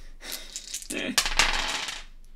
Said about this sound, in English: Oh, I've got some d6. Got some wooden d6, haven't I?